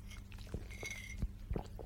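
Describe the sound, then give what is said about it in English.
Sipping of a hot drink made with roasted chicory root, cinnamon, star anise, cardamom, ginger, nutmeg and cloves: a soft slurp followed by a few quiet wet mouth clicks and gulps, with no talking. “I'm going to sip.”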